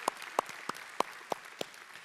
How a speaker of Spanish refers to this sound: Él es originalmente de Venezuela, pero creo que sí, merece un aplauso Venezuela sin duda alguna.